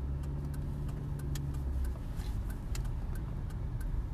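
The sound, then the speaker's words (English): A car pulls away from traffic lights as they turn green, its engine a steady low rumble heard from inside that shifts pitch partway through as it gets moving, with a faint regular ticking running throughout. “Okay, lights are green, off we go.”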